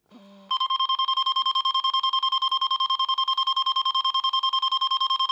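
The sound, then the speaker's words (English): A loud electronic alarm sounds after a brief low tone, pulsing rapidly and steadily with a bright, piercing pitch: the Millennium Falcon cockpit alarm sound effect from Star Wars, repeating without pause. “Millennium Falcon alarm!”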